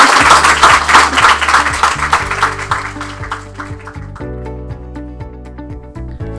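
Dense audience applause for a speaker, loud and sustained at first, then thinning out and fading as steady musical tones rise underneath and carry on alone.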